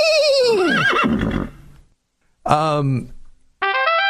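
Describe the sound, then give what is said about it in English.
A horse whinnies loudly, a long shaky call that falls in pitch, followed after a pause by two shorter, bright neighs. “once rode around town on a horse.”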